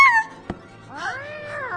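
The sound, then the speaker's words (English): A black cat meows twice: a short high cry at the start, then a longer, rising-and-falling meow after a brief tap, with no talking. “Zounds, it's a black cat. And he's headed for the table.”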